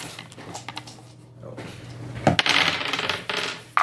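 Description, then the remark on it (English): Easy Roller dice clatter and tumble across a hard tabletop in a burst of quick, rattling clicks, settling briefly before another sharp roll near the end, over a faint steady hum. “Oh, easy roller dice. Deck it. Jeez. Cast them out.”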